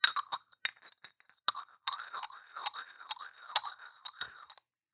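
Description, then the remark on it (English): Glass and porcelain clink together repeatedly: sharp, ringing taps in an irregular rhythm, with scraping and grinding rubs between the hits. “I have glass and just porcelain. Porcelain. Here we go. This is two vampires making out.”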